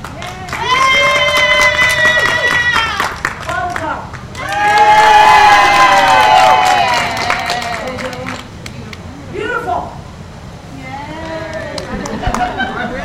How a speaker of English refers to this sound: And they're going to cheer, Daisy. And the one that gets the loudest cheer will be the new cow's name.